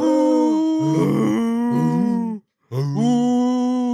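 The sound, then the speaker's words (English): A low, foghorn-like dragon noise, rapidly forced out of a long, conical, fleshy pit: two long, loud blasts with a rich, buzzing tone and wavering, sliding pitch, separated by a brief silence, with no talking. “It maybe sounds a little bit like a foghorn, actually. Or like a tornado siren.”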